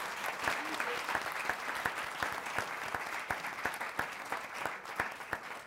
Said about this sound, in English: Let's give our students a round of applause for being here.